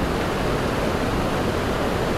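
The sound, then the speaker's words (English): A steady, continuous rush of water from a narrow, strongly flowing stream at McCabe River or Creek, fairly loud, with a dense hiss that never lets up and no voices over it. “Is all this rushy water? Gets your bladder going.”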